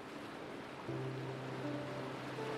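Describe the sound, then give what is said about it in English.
A steady, soft wash of ocean surf rolls continuously against the shore, joined partway through by a low, sustained humming tone beneath it. No one speaks. “Breathe in deeply and imagine the waves approaching the shore.”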